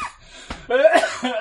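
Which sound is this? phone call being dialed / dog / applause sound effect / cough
cough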